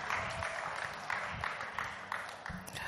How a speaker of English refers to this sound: Hallelujah. Hallelujah. Let's give our God a round of applause.